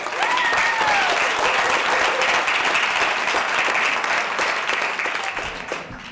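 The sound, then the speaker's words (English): A crowd applauds the pitchers before a pitching session starts, a dense wash of clapping with a few whoops, holding strong for several seconds before starting to taper off at the end. “So if we could just give them a round of applause.”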